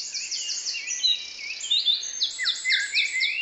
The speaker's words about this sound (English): In a children's hospital in Liverpool, England, the sweet sounds of birdsong carry along the hallways. It's a recording of the dawn chorus from a nearby park, and the intent is to calm the anxious young patients.